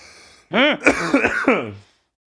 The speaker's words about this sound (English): Cough is dry, but I got no fever.